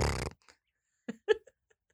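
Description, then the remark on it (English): A person imitates a horse neighing with their voice: a short, loud, buzzing noise, followed by a few quieter sputtering bursts and near-silence. “Some places just the horse neighing.”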